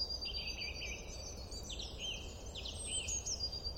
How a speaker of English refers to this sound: The hum of traffic out of the window, the siren in the distance, the rubbish lorry trundling past, the squealing children in a playground, and the faint sound of birdsong.